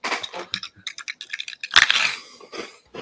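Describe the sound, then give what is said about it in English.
Crisp, brittle crunching of freeze-dried sour Skittles, a rapid series of sharp cracks and crackles with one louder burst in the middle, no voices present. “That's a satisfying crunch.”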